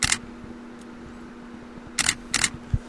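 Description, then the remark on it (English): Three sharp camera shutter clicks as a picture is taken for the cover of a release, one alone at the start and then a quick pair near the end, over a faint steady low hum with no talking. “Did you hear the click, click?”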